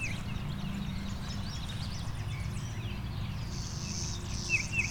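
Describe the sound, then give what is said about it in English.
Faint, scattered chirps from a bird in a pine tree over a steady insect buzz and a low outdoor rumble, with no voices. “Can't actually see this bird yet.”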